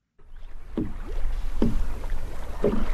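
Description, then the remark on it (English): A small boat moves across calm water on Lake Naivasha, with about three rhythmic oar or paddle strokes splashing over a steady low rumble of water and wind. “It's called Lake Naivasha, and sitting in a small boat on its water, it looks like an African postcard.”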